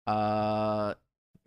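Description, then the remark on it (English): A long, loud burp, blamed on pizza, with a low, buzzy, steady tone lasts nearly a second and then cuts off, followed by a short pause and the start of someone speaking. “Sorry, I had to burp.”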